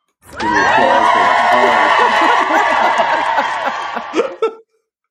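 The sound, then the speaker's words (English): A loud canned applause sound effect with a crowd cheering and laughing, a steady roar of many voices lasting about four seconds before cutting off abruptly. “I was just trying to give you your applause, your proper due.”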